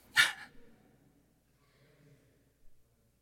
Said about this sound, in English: Grandpa's dog, not mine. Don't worry, anyone who's worried I have a dog over there.